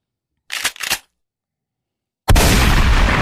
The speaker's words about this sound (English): That's how that slap sounds. That's how it sounded.